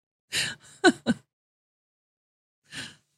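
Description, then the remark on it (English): An exaggerated gasp of awe: a sharp breathy intake with a brief voiced catch, then after a pause of silence a second, softer breathy gasp. “Gasp in awe.”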